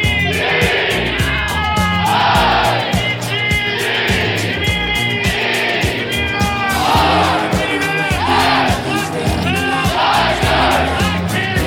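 A large hockey arena crowd roars and chants "RIT" in unison as the team comes out onto the ice, loud and continuous, with rhythmic clapping or drumbeats pulsing underneath and scattered whoops and yells rising above the din.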